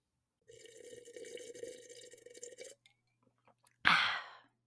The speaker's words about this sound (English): I think I'm going to add ice to this and then continue.